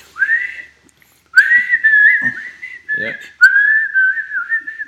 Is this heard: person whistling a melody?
yes